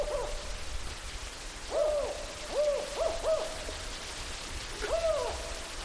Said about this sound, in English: And swiftly, a large shadow passes over us, and we can hear them, the pair of owls, talking to each other.